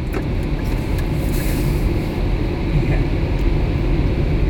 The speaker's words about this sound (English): A bloody big air dryer, isn't it?